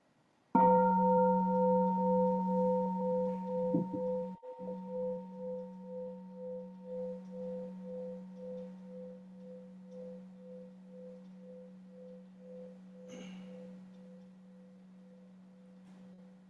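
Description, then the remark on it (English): A meditation bell is struck once during a group sitting meditation at a retreat and rings out in a long, slowly fading tone with a steady wavering pulse, a low hum beneath brighter overtones. No one speaks. “I'd like to invite a sound of the bell for us to do that.”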